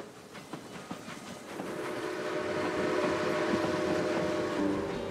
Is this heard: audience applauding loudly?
no